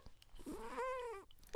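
A single chirp from a pet cat named Pigeon, chirping into the mic, stretched into a drawn-out, slightly wavering call that rises and then holds before cutting off, with only quiet noise around it.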